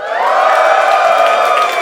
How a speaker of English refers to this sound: All right, cheer now if you're ready to podcast.